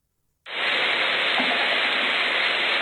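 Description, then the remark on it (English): A rustling, crackly noise like paper being moved starts abruptly and then runs steadily and loudly without pause, with a bright, hissy texture, heard in a video's audio although nothing in the video moved. No one speaks. “It sounds maybe like paper moving, but nothing in the video moved.”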